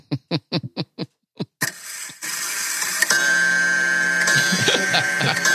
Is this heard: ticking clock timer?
yes